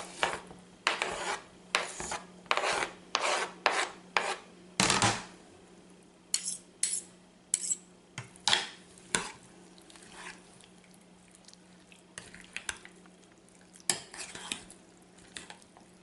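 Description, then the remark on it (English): A thick, creamy spinach dip is stirred briskly in a bowl as it blends, making repeated scraping, rasping strokes in an uneven rhythm that slows and grows sparser toward the end. No one speaks. “See how it's blending now? Spinach.”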